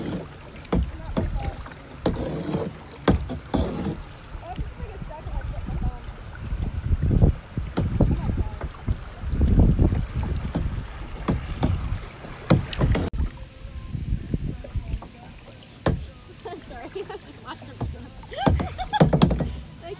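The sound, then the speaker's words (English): Kayak paddles dip and splash in a steady rhythm on a moving river, with light wind buffeting and occasional knocks against the hull. “Paddle, woman, paddle.”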